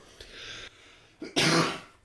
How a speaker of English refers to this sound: So that's an edit. I have to edit that cough out.